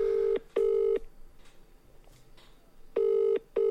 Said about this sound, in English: So here we go. My mum, ring, ring, ring. Here we go.